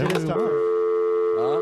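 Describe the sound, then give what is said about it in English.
A telephone ringing sound effect plays as a steady, fairly loud electronic tone for about a second, bracketed by brief vocal sounds at the start and end. “Like somebody's calling me, like there a ringing.”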